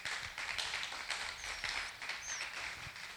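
A church audience claps steadily for several seconds as a clap offering to the Lord in a morning service, a dense, continuous patter of many hands, with a few faint whoops mixed in.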